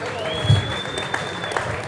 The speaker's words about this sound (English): Gentlemen, we appreciate you. Ladies and gentlemen, give these wonderful people a round of applause.